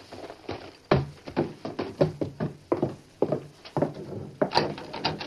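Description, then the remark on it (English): A door handle rattles and jiggles against a locked latch, followed by a series of sharp knocks on a wooden door, fairly loud, with mechanical clicking throughout. “Strange. The door's locked.”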